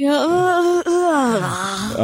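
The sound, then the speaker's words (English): A long, drawn-out yawn voiced close to the microphone, a moaning tone that bends in pitch, catches briefly partway through, then stretches on for about two seconds. “Just yawn right into that microphone.”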